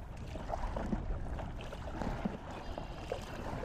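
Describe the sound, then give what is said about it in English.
Steady water swishing and sloshing, with soft rhythmic strokes of a paddle blade sweeping through a lake from a stand-up paddleboard, past tall brown marsh grass and freeze-dried cattails along the shore, over a constant low wash of wind and water noise. “Within minutes, though, I find that familiar rhythm as I sweep the blade through the water, past the tall brown marsh grass and the freeze-dried cattails along the shore.”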